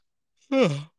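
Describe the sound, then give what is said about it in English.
A single voiced yawn that starts on a higher pitch and sinks into a lower, breathy tone, lasting under half a second with silence on either side. “And not yawn like me.”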